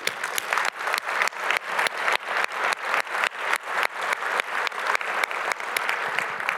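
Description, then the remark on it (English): An audience applauds steadily, a dense wash of many hands clapping at once, sustained at an even, fairly loud level for several seconds with no voices over it. “So absolutely, over the last 50 years, we have been a success, and we all need a round of applause for that.”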